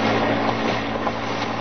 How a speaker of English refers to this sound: Car coming this way, sir. The light's in the rear view mirror.